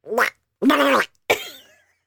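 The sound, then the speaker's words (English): A person imitates Donald Duck's voice in three raspy, gargling squawks, the middle one longest and the last one trailing off, with no ordinary speech. “We have gotten more requests for your Donald Duck voice.”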